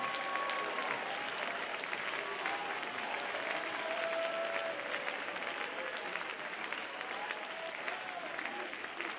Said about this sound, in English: My God, folks, that deserved a bigger applause than that.